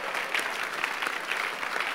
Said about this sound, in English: Anybody that is not clapping is a suspect. Anybody that didn't clap, there is something about the people that you have to think about.